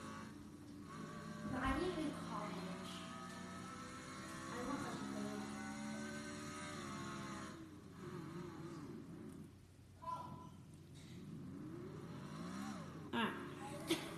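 A stock car engine in the video game Stock Car Racer drones and revs continuously, its pitch rising and falling as it accelerates and shifts, loud throughout with a steady hum beneath.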